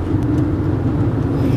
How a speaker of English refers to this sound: I know it's annoying. I know my car's loud. I got nice big ass tires in there. They're going.